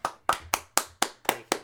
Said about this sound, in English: So the Leafs are the first team to clinch a playoff spot in the North Division. So give a little clap, bro. Give a little clap for my team.